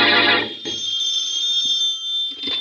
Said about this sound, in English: As we return to our story, Shorty has been released by the police, and in the Bromley home, the phone rings.